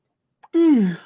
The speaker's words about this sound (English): Excuse me, yawning tonight.